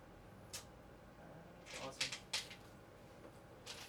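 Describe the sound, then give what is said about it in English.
Dice rattle and clatter inside a Chessex scoop bag in a few short, clicky bursts, densest around the middle, fairly quiet over a low background hum. “This was the Chessex scoop bag of dice.”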